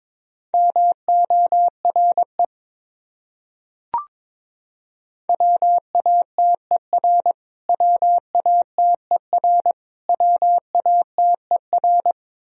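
Morse code beeps at 22 words per minute on a single steady mid-pitched tone, keyed rapidly in short and long pulses, forming several common English words separated by brief pauses, with a short click in one gap.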